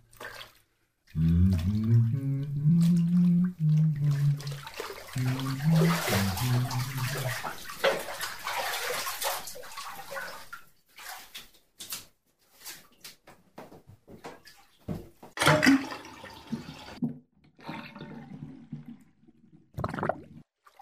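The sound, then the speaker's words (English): Bathwater sloshes and splashes loudly for several seconds, then settles into scattered splashes, drips and gurgles with brief quiet gaps, in a bathtub whose drain won't let the water go down. “Water won't go down.”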